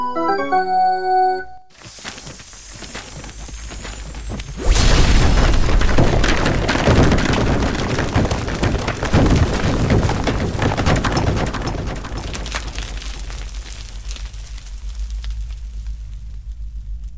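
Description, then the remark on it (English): After a short musical sting, a rushing roar builds into a loud explosion, followed by a long, heavy rumble of collapsing rock from a landslide or cave-in, heard from the underground side, slowly fading away. “It sounded like an explosion. And a landslide, yes. A landslide? Or a cave-in.”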